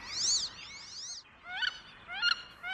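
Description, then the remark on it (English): Wood ducks at Bower Slough, a wildlife refuge by the Columbia River, give a series of high, rising whistled squeals, four or five thin, sweeping calls in irregular succession, fairly loud against a quiet background with no voices. “Bower Slough is also a favorite haunt for majestic wood ducks. Listen, can you hear their whistling call?”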